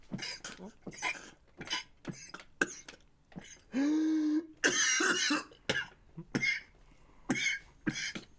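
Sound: man coughing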